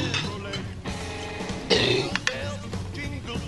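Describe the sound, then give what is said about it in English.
A dog retches and gags on a bone on the Rick and Bubba Show: harsh, throaty heaving bursts, loudest around the middle, with a couple of sharp hacking spasms over a steady murmur of background sound. “Oh, he's just yakking on a bone.”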